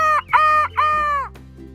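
A rooster crows once, loud, in a single multi-part call that ends in a long drawn-out note, with a low steady hum in the background and no talking.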